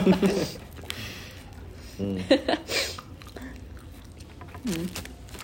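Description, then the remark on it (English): Someone chews the last bite of food, with moist, squishy bites and soft crunches, broken by a few short muffled vocal sounds. “And that's the end of the last bite, it's just like a sunset.”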